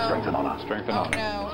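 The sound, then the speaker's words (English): A short bright clink of glasses touching in a toast, ringing briefly over a background of murmuring voices. “Cheers with whichever beverage you choose.”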